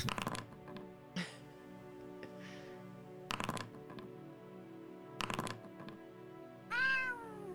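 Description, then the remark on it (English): A cat named JoJo meows clearly near the end, a rising then falling cry, after several sharp thuds and clicks over a steady low mechanical hum with no talking. “Who is meowing? Yeah, where's the meowing from?”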